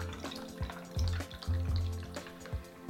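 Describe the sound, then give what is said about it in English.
Sparkling water pours steadily into a glass partly filled with ginger tea with mint and honey, a gurgling stream with a crackly, fizzing hiss and small sloshing bursts throughout, no voices. “I'm gonna add some of that sparkling water to give it that nice fizzle.”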